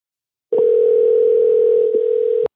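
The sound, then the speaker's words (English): A steady telephone dial tone hums for about two seconds as a phone call is placed, loud and unbroken except for a tiny hitch near the end, then cuts off abruptly. No voices. “Let's get her on the phone.”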